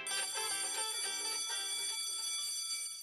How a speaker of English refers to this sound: The school bell rang and the teacher came in.